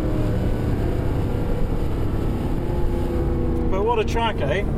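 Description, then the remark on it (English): A Mercedes SLS AMG sports car drives the Goodwood circuit with a steady, loud engine rumble and road roar heard from inside, and a voice briefly speaks over it near the end. “Drives Goodwood in an SLS AMG”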